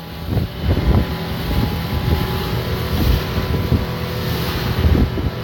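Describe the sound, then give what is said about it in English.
Motorboat engines roar steadily over open water as 12 or 13 boats pursue and try to ram a 20-foot boat, a dense low drone with choppy bursts as hulls slap waves, while gusts of wind buffet the microphone throughout. No voices are heard. “There's four boats that came close to ramming us.”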